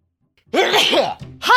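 A loud sneeze bursts out with a voiced, breathy rush, followed a moment later by the start of another strong vocal burst.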